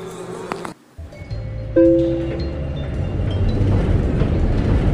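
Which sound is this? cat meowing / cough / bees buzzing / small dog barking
bees buzzing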